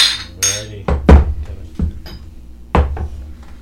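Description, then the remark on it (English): Drinks knock together as partners toast: a handful of sharp clinks and clunks spread unevenly over a few seconds, with a brief airy rustle at the start. “Yeah, you got to cheers your partner, yeah.”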